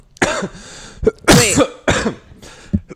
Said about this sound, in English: Cough ASMR.